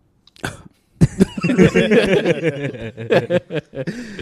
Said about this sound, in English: I don't have a cough. I'm just clearing my throat.